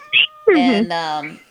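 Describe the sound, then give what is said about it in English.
A cat meows: a brief high chirp, then a drawn-out, wavering meow that slides down in pitch and trails off. No one is talking. “Oh, was that a meow?”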